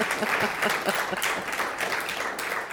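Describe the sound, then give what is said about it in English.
An audience applauds steadily, a dense, continuous patter of many hands clapping at an even loudness throughout, with no voices standing out above it. “Let's give them a round for getting through the applause.”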